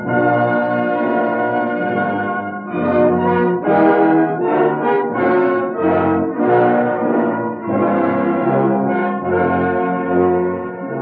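Bells ring out in a loud, continuous peal, strokes overlapping so their tones blend and sustain throughout, full with no voices.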